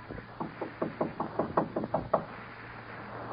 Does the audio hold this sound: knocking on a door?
yes